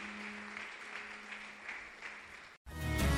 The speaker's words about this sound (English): Wonderful. Clap for them.